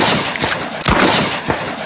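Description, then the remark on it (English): Three sharp, loud gunshots fired into a saloon floor ring out at uneven intervals, each a booming crack standing out against a steady hiss of background noise, with no talking. “Now all the rain will go out the holes I done shot in your floor.”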